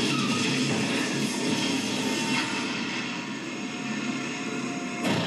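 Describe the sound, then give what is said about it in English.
A train makes a steady, loud mechanical roar with a grinding, whining edge that continues throughout, with no one speaking, then cuts off sharply near the end. “That can't be a good sound for a train to make.”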